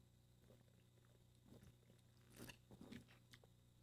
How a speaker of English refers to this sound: Excuse me. But I'm going to take a sip. Hold on.